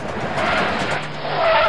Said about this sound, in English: Screech! Susie stomped on the brakes to slow down enough not to break the axles as we navigated the tanker-sized potholes.